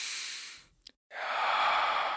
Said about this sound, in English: Make sure you're breathing from your belly, not from your chest. You want to do what they call the vase breath. You're breathing from your belly.